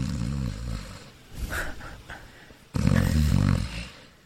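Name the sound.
voice imitating snoring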